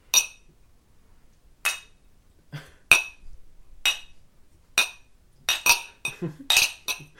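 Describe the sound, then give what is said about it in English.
Glasses of scotch clink together about a dozen times at irregular intervals, each a bright, ringing tap, with the taps crowding closer together toward the end and no one speaking. “Well, I guess if you want, we could all just like pour a little scotch on our tongues. We have some scotch on the table.”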